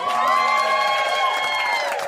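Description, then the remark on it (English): A live show audience cheers, whoops and claps loudly and steadily as guests Diallo Riddle and Byron Bowers are introduced, with a continuous wash of crowd noise and scattered hoots throughout. “Why y'all doing those, golf claps back there?”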